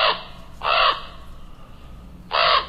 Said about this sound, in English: Yeah, a common raven right across the street, then flying right over us and then taking a position way up high in a big white pine. That's a bird that's not all that common around here, so that was pretty cool to see.